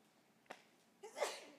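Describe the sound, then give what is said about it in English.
A single sneeze from a member of the audience, with a short sharp intake of breath followed by a loud, explosive burst that trails off. “Bless you.”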